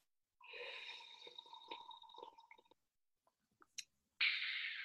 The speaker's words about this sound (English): You hold your mug and let's do a mutual sip. You ready? In 3, 2, there you go. One.